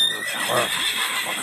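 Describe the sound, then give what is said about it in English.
A horse screams in a shrill, frantic neigh, a loud wavering whinny rising and trembling for about a second and a half with no voices present. “The horse screamed.”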